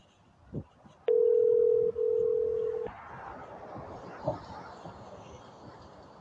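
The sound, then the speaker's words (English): A loud, steady telephone dial tone after a dropped call hums for about two seconds with a brief hiccup partway through, then cuts off, leaving faint background noise and a soft click. “I think the government dropped our call again, and then some other weird line is coming in.”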